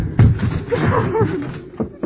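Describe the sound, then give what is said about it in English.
Heavy thuds and crashes of a woman's room door, locked on the inside, being broken down, with a loud impact at the start and two more near the end, while a strained voice sounds between the blows. “The door's locked on the inside. Break it down.”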